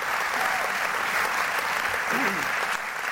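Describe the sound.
Sustained applause from an audience fills the space, a dense steady wash of clapping at even volume throughout, with faint voices murmuring underneath.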